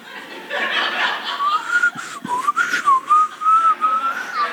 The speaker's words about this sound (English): You know, I can't even whistle right now. I could be whistling, right?